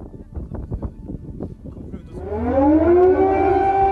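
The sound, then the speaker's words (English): An air raid siren in Kyiv, Ukraine, where air raid sirens go off around the city every half hour or so, rises in a long, slow upward wail that grows loud and holds steady, entering after a couple of seconds of indistinct voices and background murmur. “These air raids are going off around the city every half an hour or so.”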